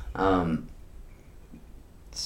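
A single loud throat-clearing cough with a rough, voiced rasp, after a person hit a vape, followed by near silence and a brief breathy hiss at the end.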